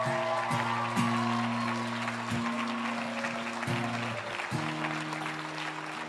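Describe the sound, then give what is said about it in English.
An audience claps steadily for several seconds, a dense, continuous patter of many hands, while sustained organ-like chords hold and shift underneath. “One more clap for our...”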